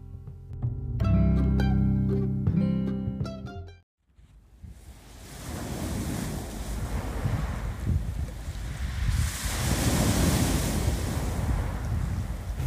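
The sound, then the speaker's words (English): A few seconds of music fade out, giving way to ocean waves rolling and breaking on a shore, a steady roar of surf that swells louder midway, with some wind noise on the microphone. “I must go down to the sea again, to the sea and the lonely sky.”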